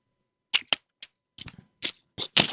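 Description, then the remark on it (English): Crinkling wrapping paper on a vegan chocolate egg: a string of sharp, irregular crackly bursts, bright and hissy, in uneven clusters over a couple of seconds with short silent gaps and no talking. “Can you hear the crinkle? The crinkling of the vegan egg? That's the wrapping paper.”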